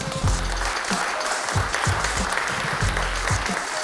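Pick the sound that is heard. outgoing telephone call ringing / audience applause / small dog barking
audience applause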